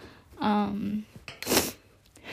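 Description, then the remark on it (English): A brief voiced sound is followed by a sharp, breathy nasal sniff, a single quick intake of air through the nose, fairly loud against an otherwise quiet background. “You guys, I'm sniffing again.”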